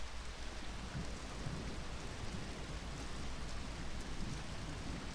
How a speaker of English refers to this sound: See, it's even starting to rain now. The floor is gonna get even colder, assuming it doesn't flood.